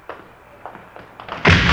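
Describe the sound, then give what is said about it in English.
Police officers force open the side door of a plant to catch a jewelry thief: four or five dull, irregular thumps against it, then a sudden loud crash as it bursts in, the noise lingering to the end. No voices. “Hey, what are you guys doing breaking in here like this?”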